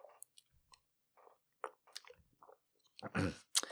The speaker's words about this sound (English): Quick little sip of water.